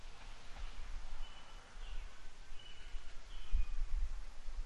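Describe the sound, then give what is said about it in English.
Faint birds chirp, a few short calls scattered over a steady hiss of outdoor ambience with occasional low rustling and rumble. No one speaks. “We got the crickets in the background this time and everything, even though that was the birds.”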